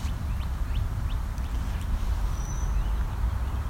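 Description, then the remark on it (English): A brown-headed cowbird gives a thin, high whistle with a few faint chirps, soft beneath a steady low rumble of outdoor background noise. “I hear a cowbird as well.”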